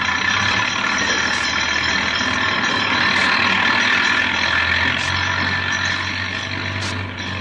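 A heavy 4-ton half-track engine roars loudly and steadily as the machine passes six inches over a person lying between its wheels and caterpillar treads, a dense rumbling drone with gritty, hissing mechanical noise on top, easing off slightly at the very end.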